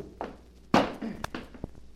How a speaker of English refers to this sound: After Eddie had tried for an hour to open the safe, where Kitty said George kept all his money, he was obliged to use force. Kitty found him a heavy hammer, and he went to work with that.